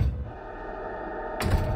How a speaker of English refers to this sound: I started towards the stairway but froze as I saw the front door downstairs being smashed open.